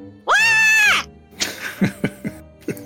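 A single loud, high-pitched playful test scream held for about a second, starting and ending abruptly, followed by a few soft, breathy vocal bursts and quiet murmuring.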